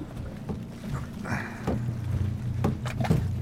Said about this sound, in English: We're going too slow to coast. Well, maybe if I paddle harder, I can get us gliding.